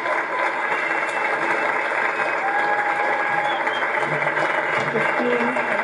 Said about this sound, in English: I'd love to hear a massive clap for two of the most essential parts of our company.